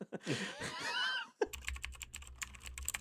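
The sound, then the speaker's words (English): After a brief burst of voice, rapid computer keyboard typing takes over, a dense, steady clatter of keystrokes lasting about a second and a half over a low background hum. “The program you are searching for is called Speed Buggy, and your fingers are still too fat for your keyboard.”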